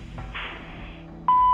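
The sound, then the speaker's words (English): After a second of low background hiss, an answering machine lets out a single loud, steady electronic beep that holds on to the end, the signal to leave a message after its recorded greeting. “We are either out of home or away from the phone, so please leave a message.”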